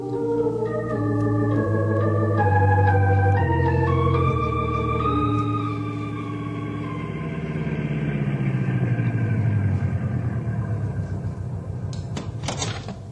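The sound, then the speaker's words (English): A car engine revs up through several gear shifts, its pitch climbing in steps, then winds down into a steady rumbling drive along a road, loud with no one talking. “Henry will take you there in the car.”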